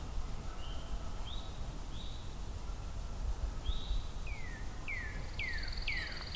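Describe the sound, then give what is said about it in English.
Songs of a northern cardinal, pine warbler and eastern towhee in the background: soft rising whistles, then a run of quick down-slurred notes and a thin steady trill over low background rumble. “Still in the background, northern cardinal, pine warbler, eastern towhee.”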